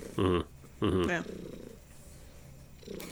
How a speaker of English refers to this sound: I can literally hear Gracie purring so loudly. It's this or her meowing.